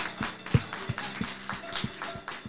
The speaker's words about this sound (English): And since it's Father's Day, it's only right giving credit to the creator of these words, Dr. Maulana Kerenk. Let's give a hand clap of praise for him on this Father's Day.